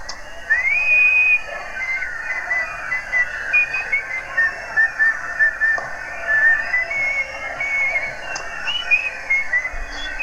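A person whistles a cheerful melody, the notes rising and falling in a steady rhythm for about ten seconds, fairly loud with no talking over it.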